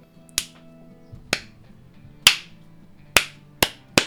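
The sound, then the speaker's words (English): One person claps six times in a loose, uneven rhythm, each clap a sharp, bright smack that quickly fades, with the last three coming faster. A faint low hum sits underneath, and no one speaks. “I was me clapping, by the way.”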